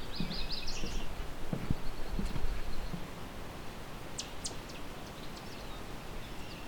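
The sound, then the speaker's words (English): Short, sharp tick calls of a couple of yellow warblers in a wet shrub thicket beside a wetland, scattered irregularly over a steady low rumble of outdoor background noise, with a brief burst of higher chirping near the start. “There's also a couple of yellow warblers here. They're just ticking though.”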